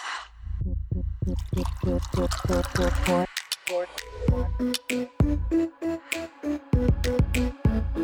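Liquid glugs steadily into a glass in a quick, even rhythm of loud pulses for a few seconds, then gives way to bright, tonal music with sharp accents.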